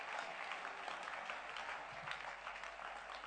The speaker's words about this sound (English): Are you clapping hands for Jesus?